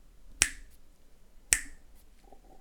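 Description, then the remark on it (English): Two sharp, crisp finger snaps about a second apart, loud against a quiet background, with a third snap beginning right at the end; slow, deliberate rhythm, no talking. “Those are snaps, fat slow and batters.”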